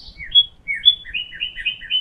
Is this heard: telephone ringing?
no